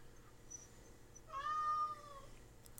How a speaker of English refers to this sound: Cat, Jesus Christ. Shut up. Alright. Let's finish this up so I can shut this cat up. Alright. Before I turn it into a pair of mittens.